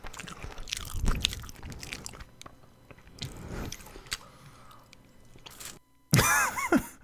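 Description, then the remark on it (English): Wet chewing and crunching with smacking mouth noises and heavy breathing while eating a cheese coney topped with onion, mustard, hot sauce and cheese, repeated bites over several seconds, ending in a louder burst of rustling or sniffing. “The breathing's worse than the chewing.”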